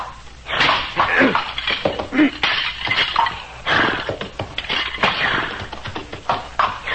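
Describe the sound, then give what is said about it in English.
Repeated loud cracking and splintering blows as the brittle antlers of a dead moose are broken with a tomahawk, landing in an irregular rhythm with harsh, crunchy bursts throughout, and no talking. “I will break the antlers of the dead one with my tomahawk.”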